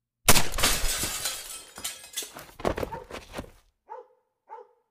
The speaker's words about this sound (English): a gunshot shattered the window.